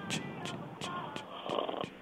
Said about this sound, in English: Is that a light snore? I think it's a snore.